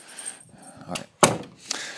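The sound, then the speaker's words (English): A door swings shut with a single solid thud, preceded by a soft rattle of the handle and followed by a faint latch click, otherwise quiet. “Let me close this door.”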